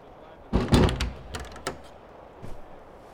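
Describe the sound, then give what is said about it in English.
A door is pulled shut: a burst of knocking and rattling, then a couple of sharp latch clicks and a soft final thump, with no one talking. “But this episode has like 40 minutes left on it, so you might want to close the door.”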